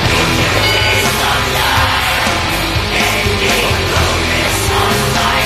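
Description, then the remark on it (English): A loud, dense death metal song with harsh screamed vocals over heavy distorted guitars and pounding drums, playing continuously at full intensity throughout. “How do you scream that entire time?”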